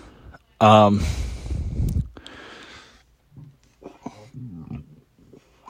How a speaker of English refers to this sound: Just ate. Burping and coughing.